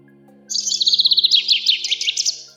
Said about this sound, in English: A small bird with a bobtail fluttered down to the boat, curious about what these strange creatures were.